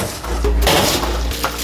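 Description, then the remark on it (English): A store employee at a hand-shaken drink shop scoops a big ladleful of ice cubes from a bin, producing a brief burst of clinking and rattling as the cubes shift and knock together, with a low mechanical hum underneath. “A store employee scoops up a big ladleful of ice cubes.”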